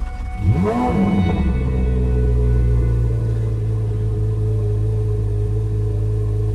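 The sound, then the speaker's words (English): A car engine revs sharply once, its pitch sweeping up and back down, then settles into a loud, steady low drone, heard from the driver's seat. “Sufficiently loud. That's from the driver's seat.”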